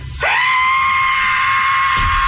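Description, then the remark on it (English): A voice imitates the high, piercing screech-whistle of an aircraft going down, one loud sustained tone held steadily for about two seconds after a quick upward swoop, then cut off abruptly. “In the bathroom taking a shave, and I heard a screeching, falling between a screech and a whistle.”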